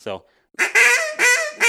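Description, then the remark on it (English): A goose comp call is blown as a hail: a short honk, then a run of loud, sustained, reedy notes that hold a high squealing whine, broken by brief dips into three or four long tones. “when you hold that comp call, that hail, that's a hold in that range.”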